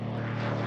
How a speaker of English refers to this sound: Oh, do I still have the plane?